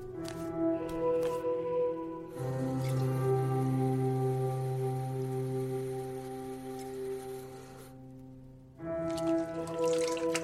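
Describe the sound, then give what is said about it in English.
Tap water runs steadily at a sink for several seconds at 4 a.m. as someone splashes their face, a rushing hiss over a low sustained musical drone, with faint drips and trickles before and after. “I got up and went to the sink.”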